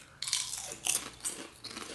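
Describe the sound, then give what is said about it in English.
Crisp crunching of a salt and cracked pepper potato chip being chewed, with four or so sharp crackly bursts spaced unevenly over a couple of seconds, moderately loud and with no talking. “But all right, guys, you're going to hear some chewing. There's going to be some crackling of this really cracked pepper.”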